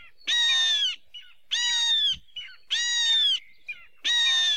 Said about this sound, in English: Very long parental care period for a hawk. Io have shrill, high-pitched calls that sound a bit like their name.